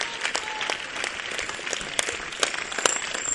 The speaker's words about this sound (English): It's good that you are clapping. Next time, clap before I come near you.